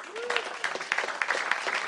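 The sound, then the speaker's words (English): An audience breaks into applause in answer to being asked who saw the Avengers movie, a dense, steady patter of many hands clapping at a fairly loud level, with a brief vocal whoop near the start. “Like, how many people here, round of applause, who saw the Avengers movie?”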